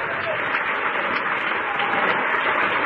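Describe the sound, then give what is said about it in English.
A dense, steady burst of applause for a military veteran, loud and continuous for a few seconds, with the individual claps blurred together into a rushing wash of sound. “I want to give you a big round of applause on behalf of the Animal Farm”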